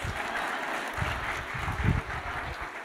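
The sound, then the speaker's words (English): A church service audience claps steadily throughout, a dense, sustained wash of many hands with no voices standing out, holding a fairly even loudness from start to finish. “Give yourself a clap.”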